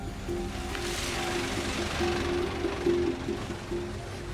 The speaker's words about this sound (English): So another truck full of dogs heading into Sandong, and that's a village well known to be a gathering point for dog meat traders.